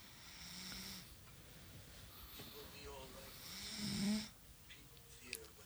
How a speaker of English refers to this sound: No falling asleep during the podcast. I heard some snoring. We can play that back. We'll play it back.